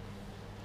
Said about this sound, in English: I don't know if you guys can hear the fucking truck in the background